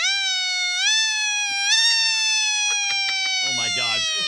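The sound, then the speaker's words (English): A person on an iHeartMedia radio show imitates a siren with their voice: a loud, sustained, high wailing tone that climbs in a couple of steps and holds steady, ending in a short rougher vocal burst. “I'm going to do my siren right now just so I love annoy you.”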